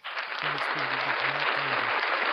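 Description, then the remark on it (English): A burst of loud, dense applause starts almost at once and holds steady throughout, with a low voice faintly audible underneath the clapping. “I think there's going to be applause in about 2 seconds here.”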